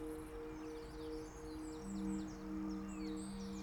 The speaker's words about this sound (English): Right now, I'm in my suburban home in the home counties, working from my garden and listening to the constant sound of birds.